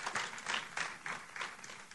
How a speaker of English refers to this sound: Children, you can go to your classes. Let's give them a big hand clap as they leave.